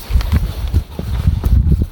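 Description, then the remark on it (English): Footsteps crunch and thud steadily through dense undergrowth in woods popular with dog walkers, on a morning dog walk, each stride bringing a crackle of snapping twigs and rustling foliage, with no voices present. “I'm out walking the dogs, walking, pushing through the undergrowth.”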